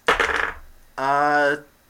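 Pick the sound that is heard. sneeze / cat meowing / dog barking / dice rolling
dice rolling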